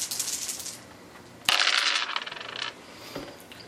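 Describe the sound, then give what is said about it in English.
Dice are rolled for a perception check and clatter onto a hard surface, a bright rattle that bursts in suddenly and tumbles for about a second before settling, followed by a single faint click; no one speaks. “Go ahead and roll perception.”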